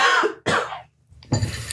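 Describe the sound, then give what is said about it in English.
Three rough, raspy coughs after a harsh smoke hit: two quick hacks back to back, a short silent pause, then a third harsh cough with a throaty edge, no talking. “That last rip was real harsh in the throat.”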